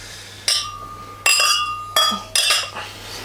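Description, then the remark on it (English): Four bright glass clinks ring out at uneven intervals, each with a sharp attack and a shimmering, slowly fading tone, as people toast after reviewing a wine. “Well, cheers to that one. Cheers.”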